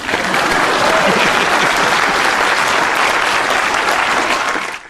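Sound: applause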